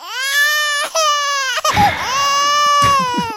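A baby crying sound effect: loud, high-pitched wails in several sustained bursts with short catches of breath between them and a brief ragged, sobbing stretch midway, with no talking.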